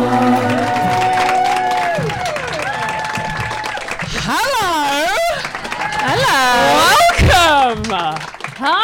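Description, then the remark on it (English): An audience at a live stage show of Drunk Women Solving Crime claps loudly and steadily while people whoop and cheer in swooping rising-and-falling voices, over a sustained musical tone at the start; the clapping and shouts swell toward the end. “Clapping, I like all this.”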